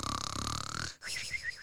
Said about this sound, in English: When the wolf had appeased his appetite, He lay down again in the bed, fell asleep, and began to snore very loud.